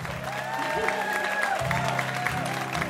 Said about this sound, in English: And everybody at WWF, we really appreciate you. You deserve a big round of applause.